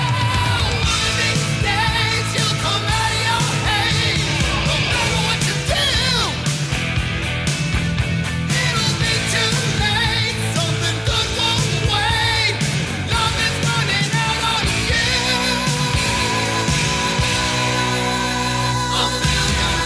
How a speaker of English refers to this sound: Vocals on this are excellent. That scream he lets out right at the end of the guitar solo, "Love is running out on you."